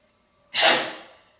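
A single sharp sneeze bursts out after a brief quiet stretch, loud and breathy, then tails off over about a second.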